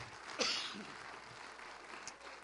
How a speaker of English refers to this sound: If you believe that, clap your hands and praise him.